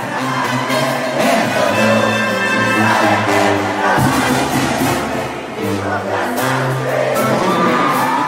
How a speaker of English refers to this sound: That there is the sound of the crowd during my concert. My Lunario people, I love you guys so much. It was actually sold out, and I'm just so excited and so grateful with everyone that was there to see me.